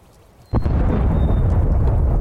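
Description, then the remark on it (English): A sudden heavy blast breaks a near-silence, then rolls into a loud, sustained low rumble of video game bombs exploding as everybody bombs the bottom of the map, with a thin high tone faintly audible above the roar. “The bombs are dropping. Everybody's bombing.”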